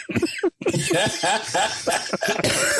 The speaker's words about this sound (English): I was trying to cough and laugh at the same time, and it wasn't working.